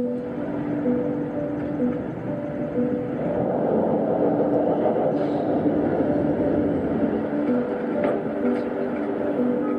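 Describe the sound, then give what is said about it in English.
A train rolls steadily along the rails, a continuous rumble with a droning hum and faint clacks running under it, holding an even loudness throughout. “It's train day.”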